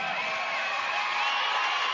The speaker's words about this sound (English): Cowboy Bill Watts. This is the man that made me see the light. Come on, I think he needs a round of applause.